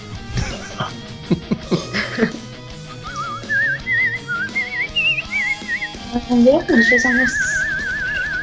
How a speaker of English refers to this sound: You whistle like a Disney princess.